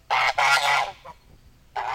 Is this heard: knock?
no